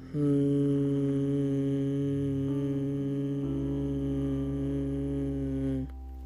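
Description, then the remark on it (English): A steady, sustained hum from a single voice, fairly loud, held for about six seconds with a slight shift in pitch before it fades out as the breath runs out; a person inhales through the nose and hums on the exhale as a meditation exercise. “So inhale through your nose and then just hum.”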